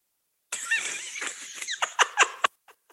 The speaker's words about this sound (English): Nigga got hiccups.